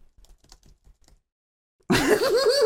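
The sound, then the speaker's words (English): A brief run of soft, scattered keyboard clicks taps away for about a second, then falls quiet before a loud, wavering, laugh-like vocal sound abruptly takes over. “The typing.”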